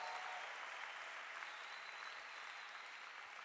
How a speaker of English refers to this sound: Can you clap your hands to show that you are having a good time?